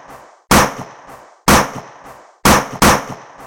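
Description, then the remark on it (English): Four loud pistol shots ring out with echoing tails, spaced about a second apart before the last two fire in quick succession. No one speaks. “He brandishes his pistol and unloads five shots into the man's gut.”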